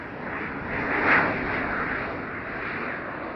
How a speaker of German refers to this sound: Da war sogar der Flughafen Tempelhof noch geöffnet. Die Flugzeuge flogen dicht über den Dächern von Neukölln.